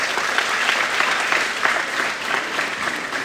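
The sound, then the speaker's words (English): An audience claps steadily for a few seconds, a dense, even wash of many hands applauding with no voices standing out, in response to a talk on the meaning of the letters of the word Etrog. “How about a round of applause for that one?”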